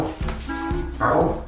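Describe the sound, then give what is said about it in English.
A person doing human pup play imitates a dog, letting out a few short, throaty barks and yips in quick succession, fairly loud, with no other talking. “What's involved in human pup play at first seems really simple because, you know, most people think you're just getting on all fours, waddling around and going woof woof and bark bark.”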